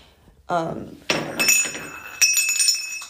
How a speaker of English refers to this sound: Okay, that was the toilet paper holder in the hotel. It just fell off the wall, and to be honest, I don't think it was ever on the wall. I think they just stuck it up there with like spit.